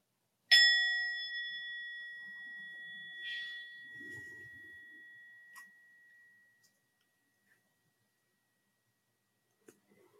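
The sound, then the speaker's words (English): A single meditation bell is struck once at the start of a meditation practice, ringing out clearly with a bright metallic tone that sustains and slowly fades over several seconds. “But we'll begin the practice just simply with the sound of the bell.”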